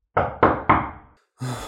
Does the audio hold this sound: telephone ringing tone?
no